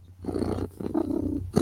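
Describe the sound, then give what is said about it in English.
A human voice imitates a cat's purr: a low, rumbling, steady vibration in two close bursts with a short break, fairly loud, with no words spoken. “I'm happy when I'm purring. I'm real happy when I'm purring.”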